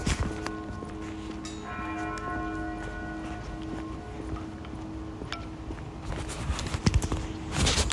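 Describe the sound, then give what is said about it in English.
The final strokes of large bells tolling at high noon on the Vanderbilt University campus on Sunday, October 15th, their tones ringing and slowly fading outdoors while footsteps crunch along. “Just caught the end of the tolling of the bells.”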